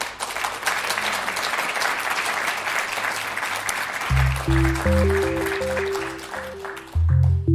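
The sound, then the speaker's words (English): An audience gives one more round of applause at the end of an evening talk, clapping steadily in a dense, continuous wash. Partway through, a low, stepping musical tune comes in underneath and plays on as the clapping continues. “So, yeah, one more round of applause.”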